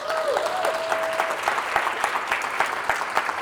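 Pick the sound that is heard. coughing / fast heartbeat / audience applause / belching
audience applause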